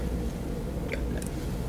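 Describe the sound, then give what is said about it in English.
A sip of water, with soft wet mouth noises and a quick swallow, heard alone with no talking over it. “And I take a sip of water.”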